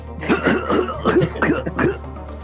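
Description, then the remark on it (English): A person coughs repeatedly in a rough series of hacking bursts with throaty clearing, sounding like an acted-out coughing fit, with a steady low hum underneath. “And your compatriots just look at you and they see you like fanning things out of your face and coughing and doubling over, and a couple of seconds pass and the coughing does not stop.”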